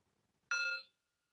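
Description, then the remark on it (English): A single meditation bell is struck, giving a bright, clear ring that fades fast to a faint lingering hum in an otherwise quiet setting. “And so as you are giving yourself permission for this cover to take care of you, I promise you that it will stay with you even when you hear the bell.”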